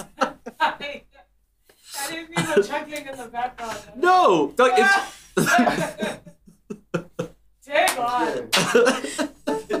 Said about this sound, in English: Okay, so he's gonna clap so that everything goes through. This is why I clap, okay? This is why.